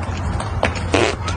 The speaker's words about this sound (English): Oh, and she farted. Hold on. She fell down and farted. It's a double whammy. In high heels.